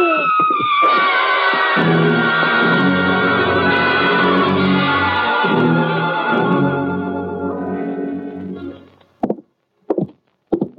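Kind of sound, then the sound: human body sound, woman screaming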